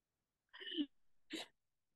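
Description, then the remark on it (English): An abrupt cough in two bursts about half a second apart, the first throatier and voiced, the second a sharper breathy hack, with silence on either side. “Sorry, I had to cough.”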